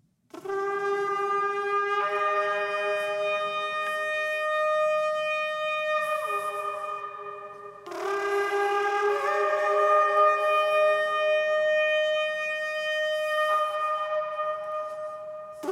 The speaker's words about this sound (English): This is the cue, by the way. Joshua 6:20 says this. The priests blew the trumpets.